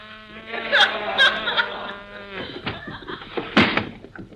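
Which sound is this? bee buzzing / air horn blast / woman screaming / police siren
bee buzzing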